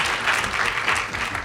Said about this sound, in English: This is where I usually pause for cheap heat, so you guys can applaud at your home institution.